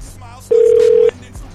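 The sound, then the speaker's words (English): A steady, loud telephone tone hums for just over half a second, a flat electronic drone that starts and stops abruptly amid faint background noise. “What's going on with this phone?”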